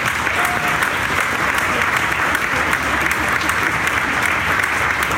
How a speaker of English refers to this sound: Come on up. Give them a round of applause, everybody.